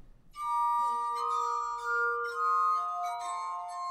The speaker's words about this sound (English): it's hard to resist playing some music written for the glass harmonica